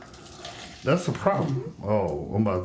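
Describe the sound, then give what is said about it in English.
Liquor pours into a glass in a steady, splashy trickle, moderately loud, continuing faintly as a man starts talking over it. “Oh, you hear that? That's the sound of a liquor pouring right there.”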